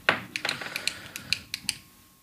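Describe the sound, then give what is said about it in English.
A quick flurry of sharp ballpoint pen clicks as several pens are clicked to test whether a microphone picks them up: about ten snappy plastic ticks in an uneven rhythm with no one talking, the first click the loudest. “Let's just click a bunch of pens and see if they come up on microphone.”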